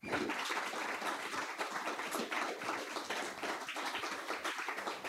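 Steady applause from an audience for the panelists at the end of a music industry panel discussion, a dense wash of many hands clapping at once, sustained and fairly loud for several seconds with no one speaking.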